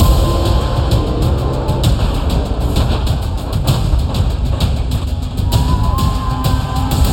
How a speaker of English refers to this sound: The crowd roars!